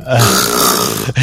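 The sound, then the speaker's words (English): A voice imitates the loud snore of the character Rin, heard just after a door is closed: one long, harsh, rattling inhale that breaks off briefly near the end, then starts again with a short final rasp. “And you walk out, and immediately, as soon as you close the door, you hear the loudest snore ever.”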